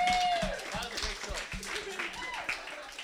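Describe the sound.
An audience claps after a sing-off performance in a quick, uneven patter, mixed with a high whoop at the start and some overlapping voices and cheering throughout.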